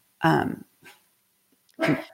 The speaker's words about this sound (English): Can you hear my dog barking? I sure can. Little cutie pie.